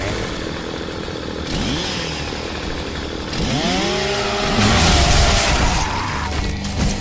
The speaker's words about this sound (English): A chainsaw for a bayonet.